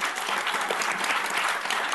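An audience at a panel discussion claps steadily to thank the panellists, many hands making a dense, even patter of applause that holds a fairly loud level throughout, with no voices standing out.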